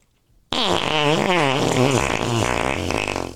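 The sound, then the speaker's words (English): A loud, sustained fart sound effect kicks in abruptly after a brief silence, buzzing and wobbling in pitch for about three seconds with a raspy, sputtering texture. “Do you like our fart sound?”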